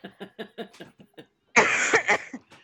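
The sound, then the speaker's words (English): A coughing fit after someone inhaled coffee while laughing: a quick run of short, choppy coughs, then a loud, harsh, raspy burst of hacking that trails off into a few smaller coughs. “oh no, I have a coughing jag because okay. I inhaled my coffee laughing”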